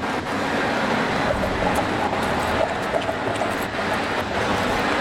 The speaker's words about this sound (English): I like that we're crossing our third cable car of the day right here.